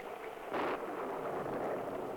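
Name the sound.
rain falling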